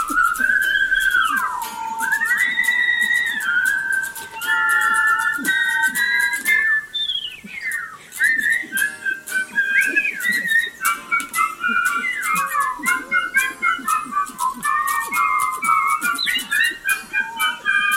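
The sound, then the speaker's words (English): A song voiced as a whistled chorus of birds: several high, bright melodic lines overlap, sliding and trilling over a low accompaniment, steady and fairly loud throughout with no talking. “It's a chorus of birds.”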